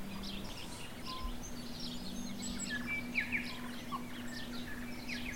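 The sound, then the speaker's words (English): Several birds chirp and sing outdoors on a humid day with a gusty wind, their calls overlapping irregularly over a steady low hum and soft background noise. “Good bird life.”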